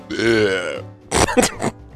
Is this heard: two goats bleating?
no